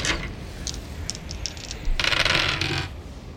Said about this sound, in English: Well, actually, I'll just do this. I'm gonna roll three dice just to see if you guys take any damage on your way through the room.